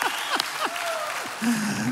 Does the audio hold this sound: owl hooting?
no